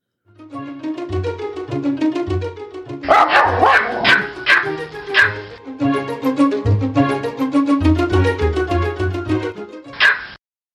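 Dogs barking in repeated loud bursts, a dense cluster in the middle and a final sharp bark near the end, over a steady tonal background with no talking.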